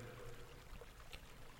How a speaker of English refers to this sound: It's night. You hear flowing water, a wooded area. Everything around you looks grayscale, monochrome. You feel cold. You're standing on a rocky outcropping, overlooking a rushing river.